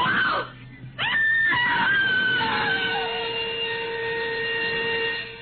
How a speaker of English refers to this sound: A woman screamed and cried for help on the Wayfield Common. But there was no one within a mile to hear her screams.